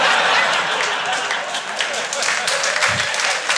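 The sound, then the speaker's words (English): A steady burst of audience applause fills the whole moment, many hands clapping densely and loudly at once, like a live crowd responding. “Honestly, wasn't expecting an applause break.”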